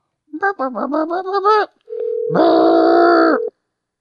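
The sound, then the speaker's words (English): A brief warbling, pitch-shifting tonal burst, then a loud, steady telephone dial tone while trying to call a caller back, holding unchanged for about a second and a half before cutting off abruptly. “I'm going to call it back.”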